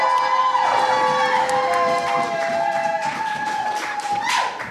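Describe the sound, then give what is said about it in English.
Steady, dense audience applause at a scored poetry competition, for the next poet in the second round, fills the whole stretch, mixed with cheering and drawn-out high whoops or whistles, holding at a loud level throughout. “Keep that applause going for our next poet in the second round for the second time.”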